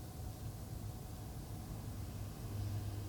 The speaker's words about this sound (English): And like a car driving by or something. And and that just helps me anchor myself here.